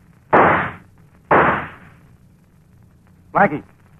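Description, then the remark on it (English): Two loud, sharp gunshots about a second apart, fired as a warning and deliberately missing, each with a short ringing decay, followed by a brief voice calling out. “You know I missed on purpose.”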